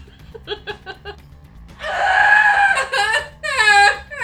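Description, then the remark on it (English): A voice imitates a demon screaming internally: a few quick breathy, snickering bursts give way to a loud, strained, sustained screech, then a wavering, warbling shriek, unaccompanied. “That's my demon screaming internally”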